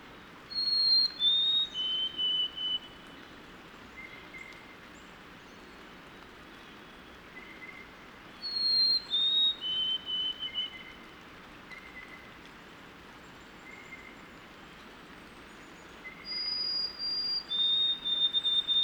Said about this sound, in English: Those are the sweet whistles of a white-throated sparrow. They used to actually breed here, but they don't anymore. So this individual is probably heading north to the Adirondacks or the Canadian North Woods.